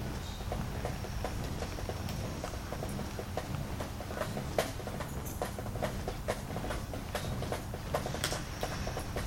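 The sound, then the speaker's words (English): A recording of steady rain with a dense, constant hiss and scattered sharp droplet ticks and patters throughout, moderately loud, with no voices. “Sounds like Oh, it's raining now. That's a recording of it.”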